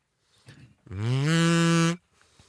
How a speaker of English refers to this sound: Oh. I forgot. You don't just blow into a kazoo. You have to hum. Let me try this sucker out.